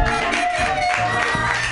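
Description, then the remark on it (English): An audience claps steadily for the next comedian being introduced, a dense wash of many hands at even loudness with no one speaking, and a faint held tone runs underneath. “And you guys are gonna love him, so clap like you've never clapped before for”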